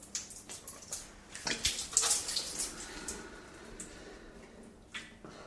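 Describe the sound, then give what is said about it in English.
Wet splashing and trickling water as a nasal rinse runs through the sinuses and out the other nostril, with irregular bursts of dribbling and spattering that swell in the middle and taper off, like liquid streaming out of a nose into a sink. “And the water should, in theory, go up, run through all my sinuses and come back down out the other nostril.”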